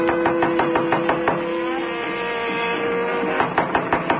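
Two bursts of quick, firm knocks on the door of hotel room 1212 on the 12th floor, about eight in the first run and several more after a pause, with muffled radio jazz playing faintly behind the door throughout; no one answers.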